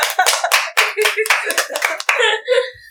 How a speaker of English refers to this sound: Did I pass? You passed. Podcast club, give a round of applause.